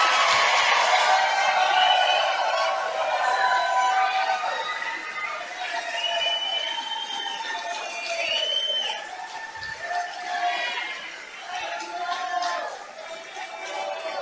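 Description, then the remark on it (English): A large rally crowd cheers and shouts in a steady, dense roar after Donald Trump, announcing his 2024 presidential run, promises voter ID, same-day voting and only paper ballots, with scattered whoops and yells rising above it for about fourteen seconds, and no single voice standing out. “They seem to love it.”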